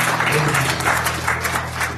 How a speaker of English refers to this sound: And hand clap for you.